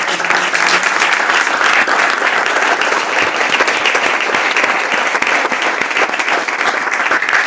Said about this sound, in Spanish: Y otro motivo que tenemos de celebración también muy importante es que vamos a celebrar este Goya a la mejor película de Campeones, merecidísimo. ¡Fuerte aplauso!